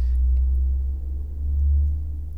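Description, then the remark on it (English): A UPS delivery truck rumbles past: a deep, steady low-pitched drone that swells louder toward the end before easing slightly, with no voices over it. “UPS truck or something.”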